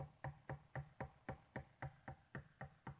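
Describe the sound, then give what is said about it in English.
Rapid, steady knocking on a door, about a dozen firm raps in quick even rhythm, clear with no voices over it. “You see, the lukewarm Christian, lukewarm church needs to listen very carefully as the Savior knocks.”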